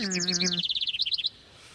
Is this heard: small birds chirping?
yes